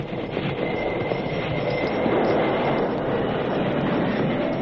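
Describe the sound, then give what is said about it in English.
A train rumbles loudly and steadily, its broad clattering roar joined by a thin, sustained squeal of wheels and brakes as it slows to a stop. “Father, stop that train! Don't shoot! I'm stopping!”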